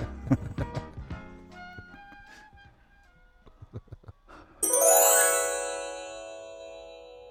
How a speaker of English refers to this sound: Oh, do you know what? My phone's ringing. I gotta go.